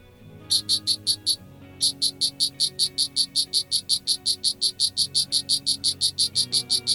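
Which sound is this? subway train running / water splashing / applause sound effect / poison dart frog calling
poison dart frog calling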